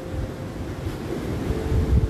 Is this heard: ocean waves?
yes